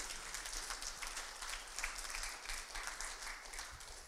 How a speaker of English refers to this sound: I think we should give her another round of applause.